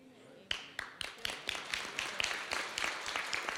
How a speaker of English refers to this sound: All the married people are clapping for me.